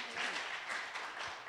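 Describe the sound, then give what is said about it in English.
A crowd applauds with a steady, dense wash of many hands clapping, fairly soft and continuous throughout, with faint voices mixed in underneath. “All right, can we give them a round of applause?”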